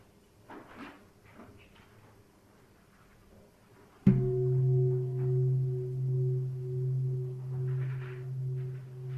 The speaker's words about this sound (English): Okay, one strike of the gong will start the session, and then two strikes will mean the end of the sitting.